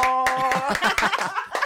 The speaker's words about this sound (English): Clap.